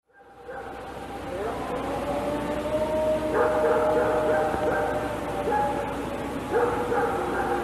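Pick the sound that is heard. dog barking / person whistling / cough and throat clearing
dog barking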